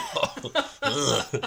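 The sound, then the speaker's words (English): A string of throaty coughs: a few short hacking bursts, then a longer rasping one, and a final quick cough, all loud with no talking. “The coughing turns me off.”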